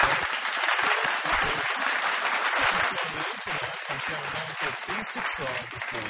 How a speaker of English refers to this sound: Some more applause, please